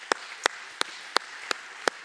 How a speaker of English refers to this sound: So, that's worth a hand clap.